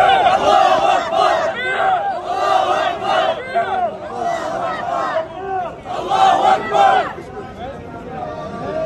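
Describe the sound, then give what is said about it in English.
A large crowd of pro-Palestinian activists shouts "Allahu Akbar" in loud, surging waves at a small group of Orthodox Jews praying in Teaneck, New York. Many voices chant together in repeated bursts that rise and fall, overwhelming throughout. “One group praying, one group shouting Allahu Akbar.”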